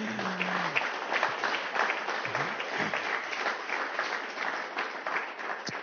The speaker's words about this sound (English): So, yeah, if you could give them another clap.